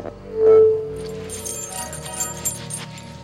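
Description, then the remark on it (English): Foley keys carried by a character in a show jangle in a steady metallic jingle with a few sharper clinks, layered over a low humming musical background after a brief tonal swell at the start. “boy, they really foleyed the crap out of those keys.”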